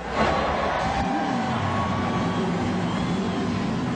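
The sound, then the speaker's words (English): Loud, continuous roar of race car engines running and revving together, a dense throaty rumble with a rising whine layered on top, with no one talking. “Gentlemen, start your engines.”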